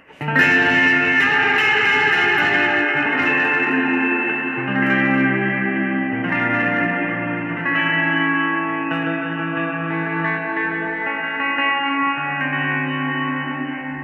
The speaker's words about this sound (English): Blade delay is pretty cool. It's got a mood reverb.